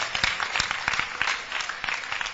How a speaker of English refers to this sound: Clap for them. Clap for them.